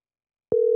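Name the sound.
telephone busy signal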